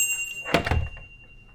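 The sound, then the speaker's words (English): A single solid door thunk, fairly loud, as a door swings and shuts with a brief clatter, then fades into quiet room tone. “Let me get the door for you.”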